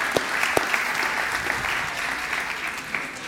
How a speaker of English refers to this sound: That was good. All right, give y'all guys a round of applause. That was fun.